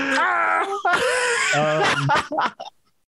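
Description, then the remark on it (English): A loud, exaggerated yawn drawn out for a couple of seconds, its pitch rising and falling in a whiny, theatrical way before trailing off into short breathy bits and silence. “It's fucking Pee Wee Herman yawn.”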